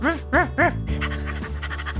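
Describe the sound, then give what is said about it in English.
A voice imitates a dog in an improv scene, giving three quick, loud barks followed by rapid, breathy panting-like yips. “please feel free to enter the scene as a new character or as the dog.”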